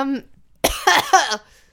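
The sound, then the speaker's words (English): A quick run of three loud, harsh open-mouthed coughs from a person with laryngitis, coughing in another person's direction, follows a brief bit of voice and then trails into quiet. “That's a very rude cough, by the way.”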